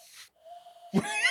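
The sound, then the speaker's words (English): A breathy hiss gives way to a soft, steady hooting tone from a cupped-hand whistle, made by a person blowing into cupped hands with the thumbs shaped as a mouthpiece, held for about half a second. An abrupt, noisy burst with a voice-like, harmonic quality follows. “No, I'm blowing. I'm blowing into my hand.”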